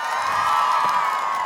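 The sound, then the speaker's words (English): An audience screams and cheers loudly in a sustained, high-pitched roar, many voices blending together for the whole moment without any single voice standing out, responding to being asked to scream if they think a hot dog is a sandwich. “Scream if you think a hot dog is a sandwich.”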